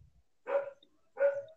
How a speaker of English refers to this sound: And then there's my dog in the background barking. I love him. Yeah, he doesn't shut up.